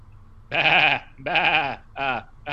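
A goat bleats four times in quick succession, loud, each cry wavering and nasal, with the last two shorter than the first. No one speaks.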